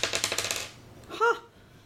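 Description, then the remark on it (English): A quick burst of an eight-sided die clattering and rattling across a hard surface as it is rolled for damage, loud, settling within a second, followed by a brief tonal blip. “I rolled an 8. So it's 1d8 plus 4, so 8.”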